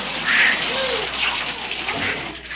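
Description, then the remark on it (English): A garden hose sprays water in a steady, loud hiss, a continuous rushing splatter like heavy rain that holds for a few seconds without letting up. “turn off that water!”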